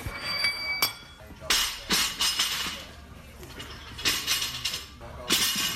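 Irregular metallic bangs and crashes ring out as athletes train at the South Australian Sports Institute during a Monday morning session, several loud clanking impacts spaced a second or so apart over a steady background hum, with no clear voices.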